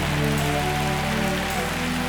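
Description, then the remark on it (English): A crowd claps hands at a preacher's urging in a dense, continuous wash of applause, steady and loud throughout, with sustained low musical tones humming beneath. “Come on, clap till your hand turns red.”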